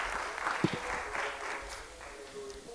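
An audience in New York City claps steadily to welcome a missionary and pastor, a dense, even wash of many hands at moderate loudness that gradually eases toward the end, with a faint murmur of voices underneath.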